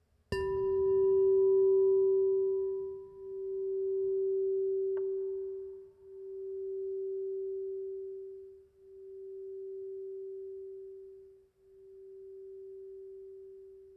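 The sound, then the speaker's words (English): A gong is struck once during a morning gathering, leaving a steady mid-pitched hum that swells and wavers in slow pulses as it gradually fades over about fourteen seconds, with no voices. “So for healing and wholeness, we ring our gong one last time this morning.”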